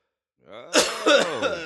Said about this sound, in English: This is hold on, can I cough?